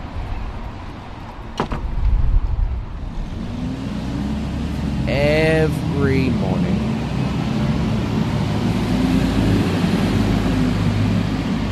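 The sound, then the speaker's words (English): Steady, loud road traffic on Broadway in Sydney's CBD at 9:10 a.m. rumbles throughout, with engines of cars, trucks, taxis and buses droning, a sharp knock early on and a brief rising whine like brakes or a passing bus; a voice speaks briefly over it. “The loud, bombastic sounds of traffic, of cars, of trucks, of taxis, of buses, zooming up and down this road.”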